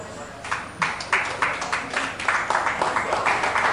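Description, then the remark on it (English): An audience claps in a fairly steady rhythm, sharp bright claps repeating several times a second and swelling slightly louder toward the end, with a low murmur of voices underneath. “I like as you clap.”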